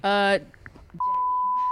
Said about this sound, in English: Say her name, I'll beep it out.